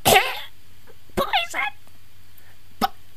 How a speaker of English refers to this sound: So I think you're just choking a little bit.